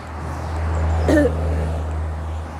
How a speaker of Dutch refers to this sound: Het is één van een paar auto's achter elkaar.